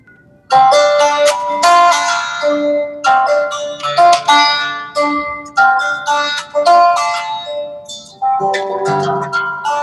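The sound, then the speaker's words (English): An acoustic guitar is played live on a show, a bright melodic passage of plucked and strummed notes, each chord ringing out and decaying before the next, in a steady rhythm with no voices. “let me grab a guitar. Yeah, let's do it.”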